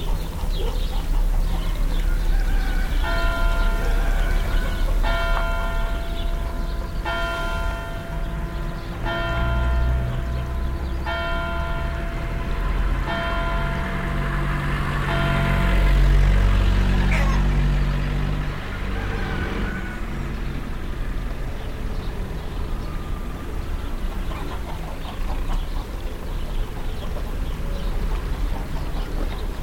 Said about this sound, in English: Church bells ring, cars, trucks, and tractors are on the move, and roosters, birds, and dogs join in the mix. … recorded this soundscape for his series, ….